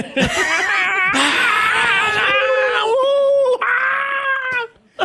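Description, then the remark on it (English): A single voice imitates a roaring crowd as crowd noise for a mock basketball call of a Wiggins-to-Steph Curry play, holding a loud, wavering, high-pitched cheer for about five seconds with brief breaks for breath before trailing off. “Excellent crowd noise.”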